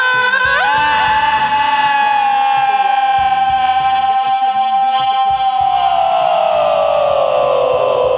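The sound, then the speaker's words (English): A big, loud yell held for about eight seconds at full strength, rising sharply at the start and sliding downward near the end, with a harsh, electronically processed edge. “As you're making your big loud yell,”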